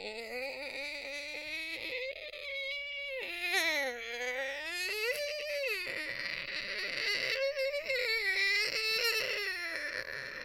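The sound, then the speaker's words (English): A door creaks open in one long, drawn-out groan, its pitch sliding up and down like a whining cry and holding steady in loudness for about ten seconds, with no talking. The unlocked door is being opened quietly, and the creak keeps going even after the door stops moving. “For every second that it keeps creaking, you just see Jack's face crinkle up more and more.”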